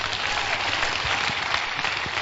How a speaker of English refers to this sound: Clap your hands.